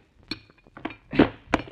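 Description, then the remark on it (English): Hard blows knock a hole through a newly built section of wall thought to hide a closet or alcove: four sharp, clattering impacts at uneven intervals, one a longer crunching burst as material gives way, with no voices. “How big a hole are you going to knock on the wall before you're satisfied you've wasted enough of my time?”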